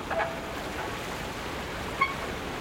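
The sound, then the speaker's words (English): Waves lap in a steady, hissing wash of water against a wharf on the Vancouver waterfront, with a low rumble of the SeaBus ferry crossing Vancouver Harbor between North Vancouver and downtown, and two brief creaks from the wharf, one early and one near the end. Recorded for the CD Soundscape Vancouver 1996. “Waves lap against a creaking wharf while the SeaBus ferry crosses Vancouver Harbor.”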